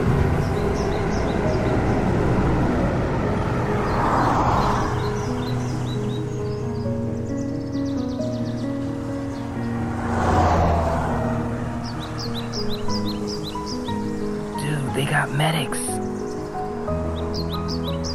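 Two Neo vehicles, not buses, sweep past in turn, each swelling to a broad rushing roar and fading, with a steady low rumble and scattered high chirps throughout and a busier clatter near the end.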